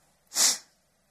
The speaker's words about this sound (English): Oh, I'm sniffing.